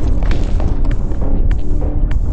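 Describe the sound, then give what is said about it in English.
A deep, continuous rumbling sound effect, loud and steady throughout, with heavy low-end roar and scattered sharper cracks and thuds breaking through. No one speaks. “And a rumbling starts to occur.”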